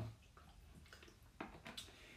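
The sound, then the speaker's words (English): A few faint wet mouth sounds of someone taking a small sip of water and swallowing, in quiet surroundings with no talking. “I have a little sip of water.”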